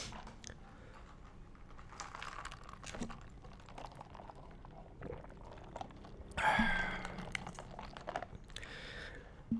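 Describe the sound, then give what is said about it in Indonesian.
Someone drinks with no talking: soft clicks and faint liquid sounds, a brief louder gulp or slosh about two-thirds through, then a final small clink. “Tapi belum sejauh dari sana, gue minum dulu ya. Hari ini gue minum.”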